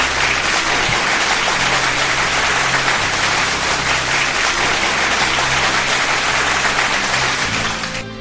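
A steady, loud round of applause from a crowd, dense clapping sustained for about eight seconds before tapering slightly at the end, with no voices.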